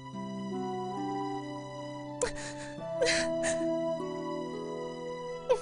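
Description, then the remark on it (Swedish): A woman crying and whimpering, drawn-out wavering wails broken by a couple of sharp, breathy sobbing gasps, with no words spoken. “Gråt inte.”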